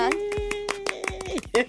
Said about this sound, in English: Why are we even clapping? I don't know.